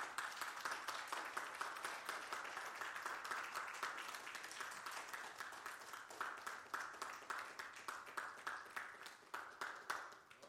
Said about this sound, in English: I appreciate y'all giving me that respect, but I want you to give God a hand clap of praise.